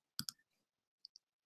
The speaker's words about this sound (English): Let me get the track listing up again. …. So loudly typing.